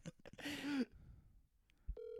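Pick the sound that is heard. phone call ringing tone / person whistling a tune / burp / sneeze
phone call ringing tone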